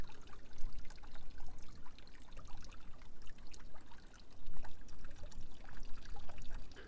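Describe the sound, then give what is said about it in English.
Water trickles steadily off a rock into a pool, a continuous splashing with bright tinkling droplets scattered over a low burbling wash, with no voices. “And I am sitting and enjoying the tinkling sound of water coming off a rock and into a pool that looks as though it's not even moving except for the ripples.”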